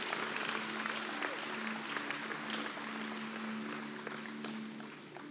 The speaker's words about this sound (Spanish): Vamos a darle un aplauso, por favor.